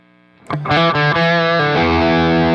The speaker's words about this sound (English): So anyway, here's my clean tone. My bypass tone. That's probably what I should say, right? Yeah. So string singer side, drive at noon, tone at noon. Playing on my Les Paul. Going through the rev.